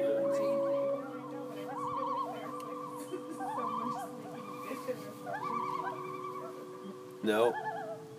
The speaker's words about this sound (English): No, those are big old fucking water birds.